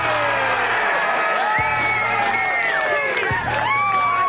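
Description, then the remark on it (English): A crowd at a long drive golf event cheers and whoops loudly and continuously, many voices overlapping with rising and falling shouts, a dense, sustained roar of excited noise throughout; crowds there are encouraged to make as much noise as they can. “It's a totally different sport to golf, with crowds encouraged to make as much noise as they can while loud music blares.”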